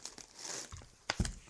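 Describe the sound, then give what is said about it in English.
Paper crinkles and crunches as it is crumpled in a quick burst of dry, rustling crackles, with a couple of sharper crisp snaps near the end. “That's nice paper.”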